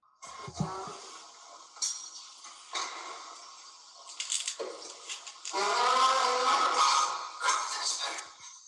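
A fart sound made by a character in a movie played through a phone speaker, thin and tinny: a few short sputtering bursts, then a longer buzzy, wavering stretch near the end, somewhat like a squeaky door.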